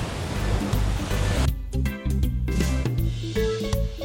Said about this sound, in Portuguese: Hoje o mar está um pouco mexido, mas eu vou entrar assim mesmo.